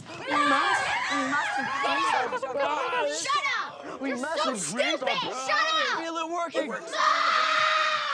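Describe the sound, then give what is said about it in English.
A girl of about 13 screams in rage, loud, her shrill voice swooping up and down in ragged bursts for several seconds before ending in a harsh, raspy shriek. “That scream, she's channeling real rage.”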